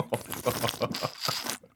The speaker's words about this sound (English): Sorry, I'm just having a sip out of my stainless steel water bottle.